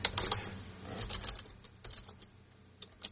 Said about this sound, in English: Makes for a good podcast is people typing in the background, let me tell you.